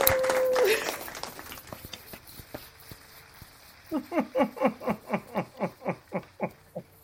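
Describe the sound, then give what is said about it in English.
A short burst of clapping, about ten loud, evenly spaced claps in a steady rhythm, coming after a few seconds of quieter sounds with no talking over it. “First of all, let me give y'all a round of applause for this, all this amazing Black Girl Magic y'all are doing.”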